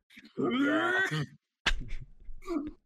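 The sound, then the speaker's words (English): A voice imitates a dad angrily growling at a computer mouse: a strained, drawn-out vocal snarl lasting about a second, then a sharp gruff burst and a shorter rumbling grunt, fairly loud. “Your dad like angrily like growls at your mouse.”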